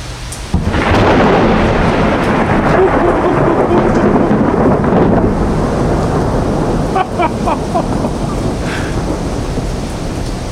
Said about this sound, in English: So, ladies and gentlemen, from Rotterdam, the Netherlands, this was a short intermezzo. Thunderstorms being born above Rotterdam City. And today it's July 9th, 2007.